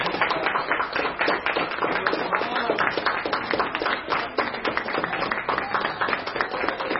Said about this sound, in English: So I'd like to just have the mom stand up here, if you would, for a second. Sorry, I know you weren't expecting that, but a round of applause.